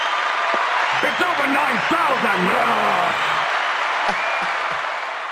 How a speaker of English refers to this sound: Everybody, y'all get his brother a round of applause. He killed it. He killed it in that tune.